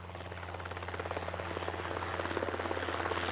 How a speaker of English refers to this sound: And suddenly, the pantry ceiling begins to open up to the skies. A helicopter approaches the Hedges Inn rooftop.